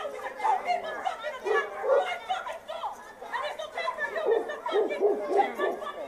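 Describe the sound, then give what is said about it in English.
Several dogs bark in a rapid, overlapping jumble, mixed with people's chatter and snickering voices, all at a moderate, steady level as if playing from a recording. “The dogs can smell the bipolar on this woman, and it's driving them crazy.”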